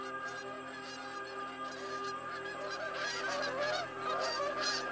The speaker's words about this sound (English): The geese were screaming, a cry full of rage and anger and determination. As if there was something out there, something above us still, that they were demanding an audience with.